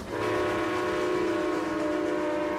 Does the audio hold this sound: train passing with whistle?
yes